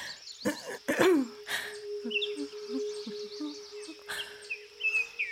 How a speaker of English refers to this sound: And all those birds singing, it just makes me want to join in.